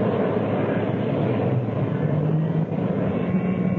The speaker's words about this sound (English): engine start completed.